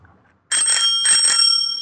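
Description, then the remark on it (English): An aftermarket bicycle bell on an olive green Schwinn cruiser bike rings, two quick bright dings in succession with a sustained metallic ring that lingers after a moment of silence. “It's got a bell on it.”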